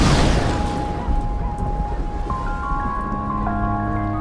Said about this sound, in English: It sounds like thunder. What sounds like thunder?